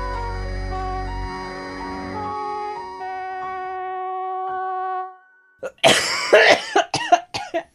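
A harsh, raspy smoker's cough breaks out in a rapid fit of several rough bursts, loud and hacking, right after a sustained electronic music passage fades into a brief silence.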